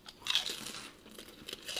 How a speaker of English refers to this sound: All right, so nothing bad to say, but they're pork rinds. They're good. Crunchy. They're better than the ones you'd buy at Food Lion. Mm. Very airy.